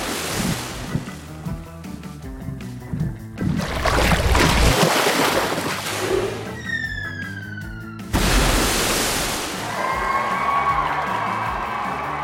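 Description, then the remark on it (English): A blue whale breaches, surging out of the water and crashing back down with a huge splash, followed by another rush of surf while whale watchers cheer faintly in the background. “That means I burst up from the water to the surface, and then I land with a huge splash.”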